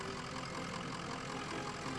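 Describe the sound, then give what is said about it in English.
The engine of a chilled-grease truck idles with a steady, continuous rumble, holding an even level throughout with no speech over it. “It's the Porky's Chill Grease Truck!”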